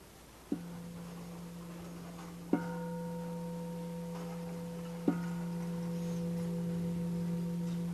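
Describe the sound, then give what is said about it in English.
A meditation bell is struck three times, a couple of seconds apart. Each strike rings out with a steady, low humming tone and bright overtones that sustain and build without fading, with no talking. “In a moment, I'll ring the bell and stay with that sense of embodied presence.”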